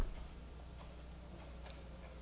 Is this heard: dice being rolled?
no